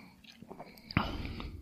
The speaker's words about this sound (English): Here's my first sip of Dad's root beer live on air. Going to do some science.